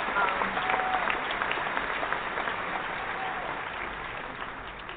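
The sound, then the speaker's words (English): An audience claps in a dense, steady round of applause for a man with a disability and his accomplishments, lasting the full few seconds, with a faint whistle or cheer near the start before the clapping slowly tapers. “I tell you right there, we just want to applaud you and just give you a round of applause.”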